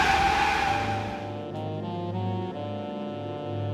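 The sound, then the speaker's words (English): A car's tires screech in a hard skid as it makes a handbrake turn while fleeing police, then the engine keeps revving with a steady, droning roar, loud, with no voices. “We'll show these pigs how handbrake turn.”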